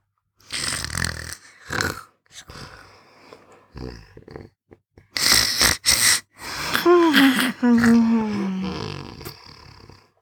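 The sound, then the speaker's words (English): Loud snoring from a small dragon, Flame, asleep on a pillow: several raspy, breathy inhales and snorts in an uneven rhythm, with a growly, whistling tone toward the end, and no talking. “The next day, when he woke up, Flame was still next to him, snoring.”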